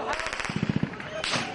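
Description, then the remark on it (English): A rapid burst of automatic gunfire in Gaza during a temporary four-day ceasefire, as Palestinians apparently tried to return to homes in northern Gaza: a dozen or so sharp cracks in quick rhythm, then a louder single blast or crack, with faint background noise. “CBS News captured automatic gunfire ringing out as a group of Palestinians apparently attempted to return to their homes in northern Gaza after evacuating during the fighting.”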